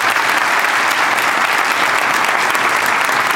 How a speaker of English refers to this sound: So we already applauded for you. We could do it again, but I just want to appreciate you. So go ahead and be seated. Can we do it again?